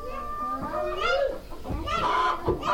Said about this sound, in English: And like most places in Africa, Bahoma has chickens scavenging around town. But here, chickens also mean business.